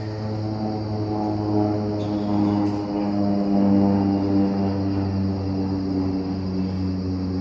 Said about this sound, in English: I don't know what's going on with these dang planes.